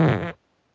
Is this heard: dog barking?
no